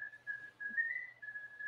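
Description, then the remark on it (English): A person whistles a sustained, wavering tone that dips and rises slightly across a couple of seconds, clear, with no talking over it. “He's just whistling because of what you're saying is just bunk.”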